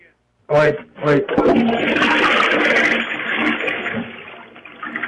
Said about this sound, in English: And we're in the bathroom, and we're trying to flush the sheets down the toilet, and there's just water everywhere.